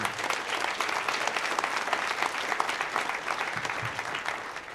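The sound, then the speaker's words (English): A live audience claps steadily for several seconds after a text from Chris Metzen is read out, a dense, even wash of applause from a sizable crowd with no voices standing out. “I can tell I'm going to write him back so you got clapped for a text.”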